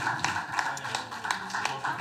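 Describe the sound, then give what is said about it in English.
A small audience applauds a man invited up to the front, with distinct claps landing in a loose, fairly steady rhythm at moderate volume, and a faint murmur of voices in the background. “And folks, can you just please, please, please give a strong round of applause for”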